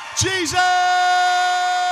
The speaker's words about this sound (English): Some of these people that are shouting have been doing it for 2 years, 5 years, 7 years, 10 years, 20 years, 30 years, 40 years, and more.